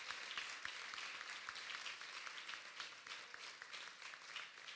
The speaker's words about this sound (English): Now, I still got some friends coming. Give them a hand clap. I still got some friends coming.